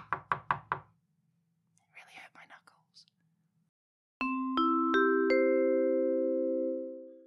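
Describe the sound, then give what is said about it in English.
Four quick, sharp, loud knocks on a wall in a steady rhythm, followed by soft whispering and then a few ringing, sustained musical notes. “I mean, future isn't a few days older than this original recording, but I'm just editing and listening back to how loud the knocks sounded.”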